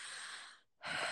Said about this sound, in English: Exhale, inhaling. Yeah, what's that called? Breathing.